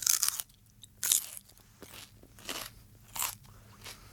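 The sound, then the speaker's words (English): Loud crunching and biting of crisp food, with several sharp bursts spaced about a second apart and quieter chewing crackles between them. Nobody speaks. “Loudly chewing, crunching, slurping, or biting foods, drinks, or gum.”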